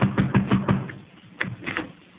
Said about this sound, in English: I'll go ahead. Knock on the door.